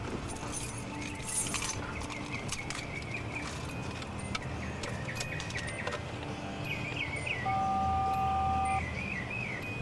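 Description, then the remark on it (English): A bright, metallic jangle of keys rattles in a short burst near the start, then a few scattered clinks follow over a steady background hum with faint chirping tones. “Here, I have the keys right here.”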